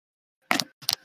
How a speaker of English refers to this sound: He makes clicky clacky noises on his keyboard.